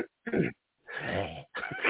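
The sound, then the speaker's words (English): Someone clears their throat in three rough, raspy bursts: a short grunt, a longer gravelly rasp, then a final harsh hack, with brief silences between and no speech. “All right, let you clear your throat and go through the list.”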